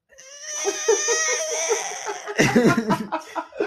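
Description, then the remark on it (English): A voice imitates a small child crying: a long, quavering, high-pitched wail with a bleating wobble, breaking into choppy, sobbing gasps near the end. Loud and alone, no other talk. “I feel like I tried to do like a little kid cry, but just came out like a demon goat.”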